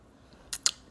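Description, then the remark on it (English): Two quick slurping sips from a mug of hot cocoa, each a short airy burst about a tenth of a second apart, over a quiet background with no talking. “Sorry, I was taking a sip of cocoa”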